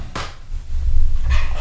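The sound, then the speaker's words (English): A cap is put on a plastic bottle of hydrogen water, making two short, scratchy bursts of plastic handling about a second apart over a low background rumble. “See, we always put a cap on it because the hydrogen escapes like aliens if you don't do it.”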